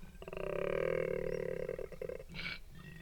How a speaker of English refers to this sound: The male koalas bellow at each other.